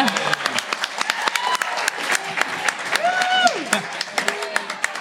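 A live show audience shouts a birthday greeting together in a loud unison chorus over steady, dense applause throughout.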